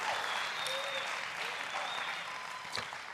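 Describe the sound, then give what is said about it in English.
An audience claps hands in praise of the Lord in a steady, dense wash of applause, with a few whoops and voices rising over the continuous clapping. “And if you're glad about it, come on, celebrate the Lord with a hand clap of praise.”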